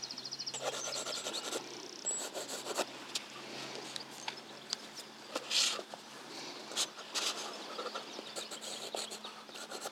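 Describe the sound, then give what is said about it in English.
A pencil scratches across paper, adding pebble details and sea movement on top of a watercolour, in short, quick, irregular strokes, a dry papery rasp with occasional brighter scrapes, soft overall, over a faint steady low hum and no talking. “I'll just come back in with my pencil just to add a few more details on top, so like pebble details.”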